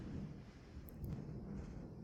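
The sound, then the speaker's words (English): A steady, deep rumble of thunder rolls through the whole stretch, heavy in the low end and fairly loud, with no voices over it. “Thunder? Well, yeah, it's Thunder.”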